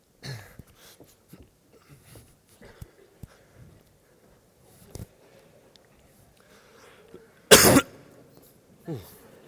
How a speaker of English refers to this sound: Oh, coughing everywhere. What's going on?